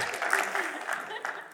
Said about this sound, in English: I guess that's a place you can give the Lord a hand clap. You should be glad about that.